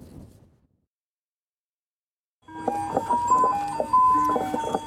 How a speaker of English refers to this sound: They call it the Icicle Tricycle, the coolest ice cream truck in the Fraser Valley, and the man who runs it later on the NewsHour.